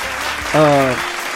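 Steady clapping from a small group fills the moment, with a brief sustained vocal whoop rising over it midway before the applause carries on.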